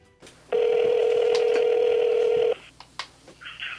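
A phone call placed to a music producer rings out: one steady, mid-pitched ringing tone holds for about two seconds, then stops, followed by a few faint clicks and a brief higher beep. No one speaks.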